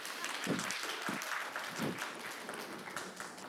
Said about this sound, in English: Well, we finally got an offer accepted. Applause. Okay.